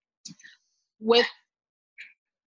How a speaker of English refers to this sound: Sorry, I have two puppies who always like to make a guest appearance.